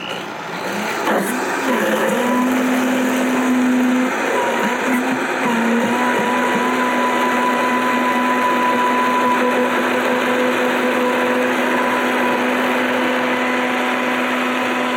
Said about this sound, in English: So, I know the blender's on, but what's happening right now in the blender is now it's gotten to a point where it's like very smooth. And I'm gonna let it go for as long as I can to get it as smooth as possible.